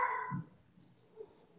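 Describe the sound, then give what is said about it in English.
A dog gives one short, muffled bark at the very start, not very loud, followed by near silence with a faint low rustle. “Oh, my dogs.”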